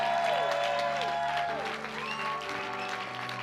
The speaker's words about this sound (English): Come on, can we clap for those three preachers?